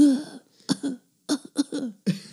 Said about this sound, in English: I wish you guys could see the way she's bouncing to her cough, though.